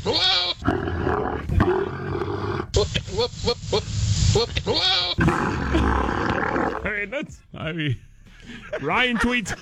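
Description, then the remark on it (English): Loud camel and goat mating noises combined: deep rumbling groans and roars overlapping with wavering bleats, repeating in rough bursts for about ten seconds with barely a pause. “Again, this is a camel and a goat right there.”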